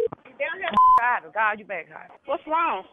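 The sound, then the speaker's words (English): A single short telephone keypad tone sounds while dialing a three-way call, a loud steady beep with a click at each end, set among continuous voices talking. “So I need you to call on three ways.”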